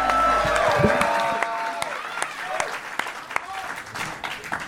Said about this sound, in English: So give him a big round of applause, everybody. Let's go.